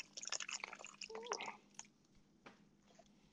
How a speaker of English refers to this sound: So 2 cups of water in there. Pour it in, right? Just pour it in there.